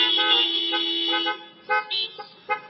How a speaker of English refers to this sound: If there is a woman in your life that you can think about that has put their needs aside to help you, just let me know by honking your horn for a minute. There we go.